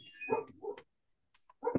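A puppy barks in a few short, high-pitched yaps, two close together and then one more after a brief pause, with no talking.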